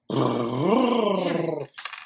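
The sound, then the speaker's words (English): A voice imitates a boat motor whirring, a steady buzzing drone that swells slightly in pitch for about a second and a half, then ends with a short breathy sputter. “All right, so the frogman storms off the stage, runs over to the boathouse, and you guys hear a boat whir up. It goes.”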